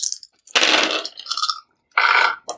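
Several six-sided dice clatter and rattle across a hard surface in two main bursts of dense clicking, with a few brief taps around them, fairly loud with no voices.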